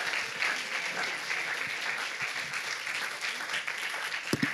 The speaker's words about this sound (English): would you guys just give these kiddos a big round of applause and bless them as they come up?